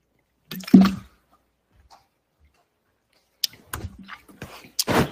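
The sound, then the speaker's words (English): A person drinks water: a wet slurp and gulp, a quiet pause, then a run of small swallows, lip smacks and liquid clicks. Nobody speaks. “Hold on, I'm drinking my water.”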